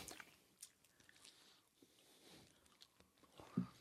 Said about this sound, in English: I'm trying to like, eat away from the mic because I don't want to be all up in the mic chewing and shit, you know what I mean? It's pretty good.